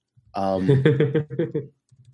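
Typing on a computer keyboard to send a message, a short rhythmic run of keystrokes over a steady tonal hum, fairly loud for about a second and a half before trailing off.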